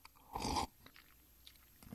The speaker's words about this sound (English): Well, mine isn't that brown, but it is 13 years old, and I'm certainly it's eminently drinkable. Let me just take a sip here.